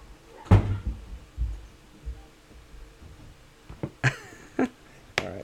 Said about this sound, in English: Sorry. Did you have to shut the door on him? I had to shut the door. If this was any other topic, I would probably let him run in and out, and it would be cute.